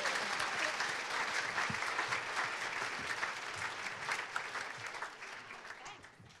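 A crowd claps steadily, a dense crackle of many hands that stays loud for several seconds before easing off slightly at the end.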